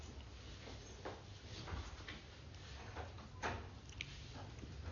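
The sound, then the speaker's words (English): A door being opened, heard as a few scattered clunks and soft rattles over a steady low hum, moderately faint and without any talking. “Can you open that door?”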